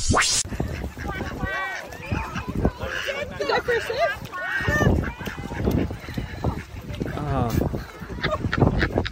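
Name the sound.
person imitating duck quacks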